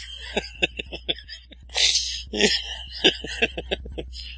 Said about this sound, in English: Sorry. Coughing. Oh, dear. Shouldn't make myself laugh.